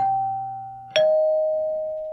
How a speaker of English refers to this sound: Today, we'll just go with a doorbell.